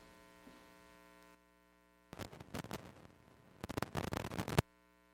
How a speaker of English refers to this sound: Satan would use that buzzing and that humming noise to distract you from what God has for you this morning.